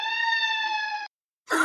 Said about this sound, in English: You hear a siren. Reminder that I live near a fire station.